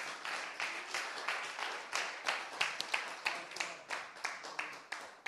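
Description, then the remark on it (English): A church audience applauds steadily for about five seconds, with many overlapping hand claps forming a dense, continuous patter that rises and falls slightly in loudness. “Come on, it deserves one clap.”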